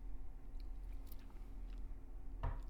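Someone sips rye whiskey: soft wet mouth clicks, then one short slurping sip near the end, over a steady low hum with no talking.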